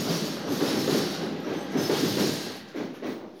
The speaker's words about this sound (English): Let's pause our talk for a second, and I'll use a different microphone to just record this and see what we pick up. There's a train going past right now.